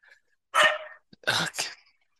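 A dog barks three times: one longer, harsh bark, a short pause, then two quick barks in a row, loud and clear with no talking over them.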